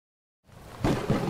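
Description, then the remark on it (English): After a brief silence, a storm swells in: a broad, hissing roar with low rumbles building underneath, growing louder and steady with no voices. “Our magic put a storm in the sky that has rendered the surface of our planet uninhabitable.”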